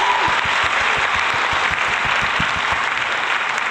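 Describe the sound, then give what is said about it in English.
Steady, dense applause from a crowd for Lewis Hamilton's 92nd Grand Prix win, a continuous wash of many hands clapping at full volume for a few seconds with no voices standing out. “So let's give that an applause.”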